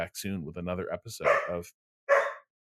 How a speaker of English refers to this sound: Mina is now timing her barks to make it impossible for me to think as I try to read this. Until that, Mina, like, she's gone from, like, 75 minutes of patience to 2 hours.